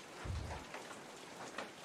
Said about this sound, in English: Well, it's raining. It's basically the only way those days go. No. Well, I don't mind the rain too bad.